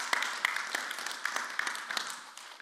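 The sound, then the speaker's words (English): A crowd applauds steadily, many hands clapping in a dense, continuous patter at moderate volume, with no voices over it. “I liked that inclination to clap.”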